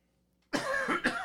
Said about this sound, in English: Excuse me. That's the other reason you take pauses, so you can, like, cough to clear your throat.